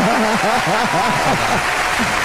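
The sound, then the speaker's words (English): Steady audience applause for the nominees of a best multiplayer game award fills the whole stretch, a dense wash of clapping with voices rising and falling in short repeated cheers over it. “Yes, and a round of applause for all our nominees.”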